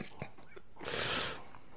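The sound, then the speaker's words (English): A dog gnaws a chicken bone: a few soft, crunchy clicks give way to a short burst of wet crackling chewing, fairly quiet and with no voices. “What is happening to you right now? Stuck on the inside of the bone.”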